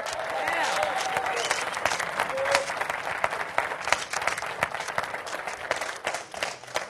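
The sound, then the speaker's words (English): An audience gives the Lord a hand of applause, many hands clapping steadily in a dense, continuous patter that holds at an even level for several seconds, with a few cheers and voices rising through it. “Well, somebody give the Lord a mighty hand of applause.”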